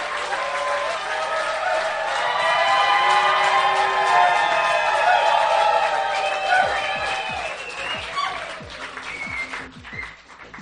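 A crowd rises to its feet and cheers and applauds loudly after a talk, with whoops and whistles over dense clapping that continues steadily, then thins into scattered individual claps as the ovation tapers off near the end.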